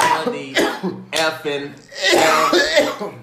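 A man coughs and clears his throat several times in close succession, with rough, voiced bursts of moderate loudness and no other sounds around them.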